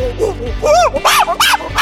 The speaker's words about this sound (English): There's some monkeys.